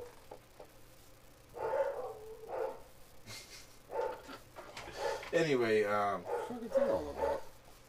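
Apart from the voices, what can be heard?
dog barking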